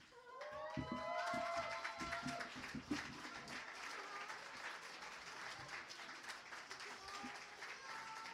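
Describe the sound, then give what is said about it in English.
An audience at a performance night at Craft Brow breaks into sustained applause for everyone who performed that night, a dense wash of clapping that holds steady for several seconds, with a few cheers and voices rising over it at the start. “Okay, give everybody who performed tonight a big round of applause.”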